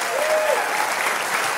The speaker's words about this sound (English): Man, praise the Lord. Hey, keep clapping. Let's celebrate our fifth and sixth grade.